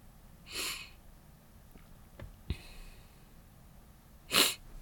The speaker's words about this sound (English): I don't want to sniffle again all episode. I remember the last time I did that. So I'm going to try and not do that.